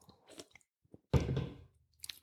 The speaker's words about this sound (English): I'm going to drink a sip of a Coke